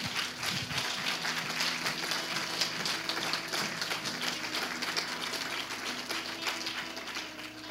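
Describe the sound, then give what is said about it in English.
A crowd gives God a praise clap for several seconds, a dense wash of many hands applauding together, fairly loud and continuous with faint murmuring underneath. “Yeah, give God a praise clap.”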